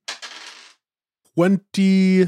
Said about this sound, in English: All right, so that's 2d8. You roll all of your dice twice.